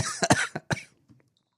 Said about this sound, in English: Why am I coughing from this beer? It's highly carbonated.